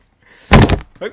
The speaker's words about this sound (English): Jim Broadbent just knocked on the ceiling. That was terrifying. I think he's doing the can up there.